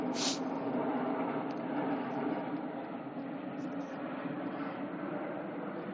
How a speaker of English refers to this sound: I'll let this plane pass.